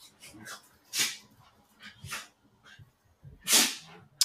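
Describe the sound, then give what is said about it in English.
Dogs play-fighting, with Holly grunting as she beats up Beans, a few sharp snorting grunts and huffs bursting out at irregular moments amid quieter scuffling and low growly rumbles, no one talking. “Are your dogs sneezing right now? They're fighting.”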